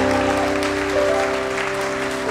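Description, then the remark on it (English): A large audience at a church service claps steadily and continuously, a dense wash of applause, with sustained musical tones humming underneath. “If you believe it, give the Lord a clap in the house.”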